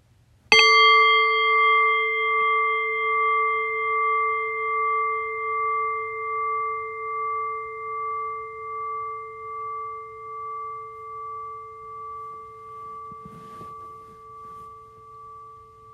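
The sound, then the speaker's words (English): A single meditation bell is struck once, ringing out with a clear, pure tone that shimmers and pulses as it slowly fades over many seconds, with faint background rustle near the end. “Allow the fading bell to guide your awareness into silence.”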